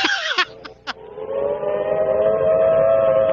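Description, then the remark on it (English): A civil defense warning siren rises into a long, steady wailing tone that holds loud and unbroken, preceded by a few brief clicks and bursts at the start. “That signal means to stop whatever you are doing and get to the nearest safe place fast.”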